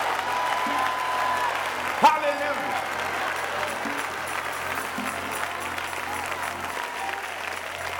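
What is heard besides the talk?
audience applauding and shouting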